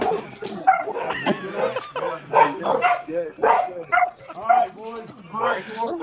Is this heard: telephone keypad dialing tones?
no